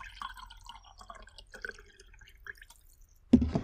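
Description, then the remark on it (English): Coffee pours steadily into a cup, a quiet trickle with gurgling, rising tones as it fills, ending in a short, louder clunk. “I need to pour myself a cup of coffee today.”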